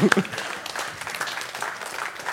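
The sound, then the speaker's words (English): A crowd claps for two people in a dense, steady patter of many hands, fairly loud throughout, with a brief voice heard at the very start. “Oh my gosh, can we clap for these two?”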